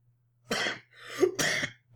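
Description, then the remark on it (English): Two harsh coughs from one person, separated by a raspy throat-clearing breath, with the start of another cough at the very end. No one speaks. “Now I'm coughing.”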